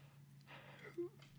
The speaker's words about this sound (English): Sorry, I had to yawn.